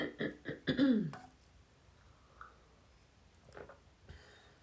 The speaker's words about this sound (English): Let me grab a sip of my tea for my throat.